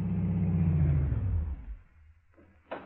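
A car engine rumbles, then winds down and cuts off after about a second and a half, leaving near silence broken by one brief clunk.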